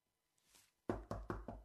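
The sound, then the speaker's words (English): Five quick, solid knocks on a door in a steady rhythm, loud, preceded by a faint soft rustle. No one speaks. “he's knocking.”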